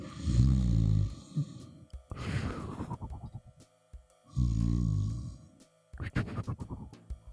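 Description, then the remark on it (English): A voice imitates loud, exaggerated snoring: four rumbling, growly snores in a slow rhythm, each followed by a breathy exhale and a short pause, fairly loud. “… is asleep on the couch, snoring.”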